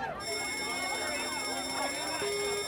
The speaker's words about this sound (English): Man, someone pulled the alarm. Oh, who the hell pulled the alarm? I did.